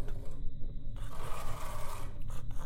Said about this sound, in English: And then there's a sort of scratching, a little scratching and a scratching from the far side of that door.